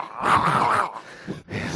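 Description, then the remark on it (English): A small, posh terrier in Queenswood growls and snarls, a loud throaty rumble that rises and wavers for most of a second, then breaks off into shorter, rougher snapping bursts. “Podcasters savaged by small ferocious by terrier.”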